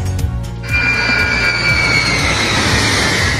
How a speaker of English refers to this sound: The massive plane that just arrived in Vancouver, once abandoned in Afghanistan, the rescue effort to bring all these pets back